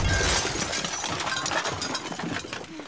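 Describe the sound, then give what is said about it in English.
A loud, chaotic crash of crunching metal and breaking glass as a car flips over, dense and sustained, with a heavy low thud at the start and scattered bright clinks and rattles throughout. “The car's flipping over!”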